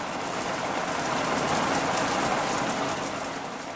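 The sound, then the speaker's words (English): Steady rain falls without a break, a dense, even hiss with a low rumble beneath it. It holds at one level throughout, fairly loud, with no voices. “No, no, but this rain, you know, this rain.”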